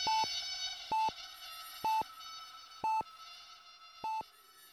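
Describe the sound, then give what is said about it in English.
A heart monitor beeps five times in a steady, roughly once-per-second rhythm, each short electronic tone clear over a faint background hum, with no voices. “The beeping of the heart monitor gets faster, so I stop and just close my eyes till it's over.”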